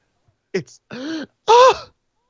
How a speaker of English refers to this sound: We all gasp every time.